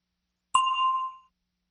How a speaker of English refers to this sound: Listen for the bell, then say your answer.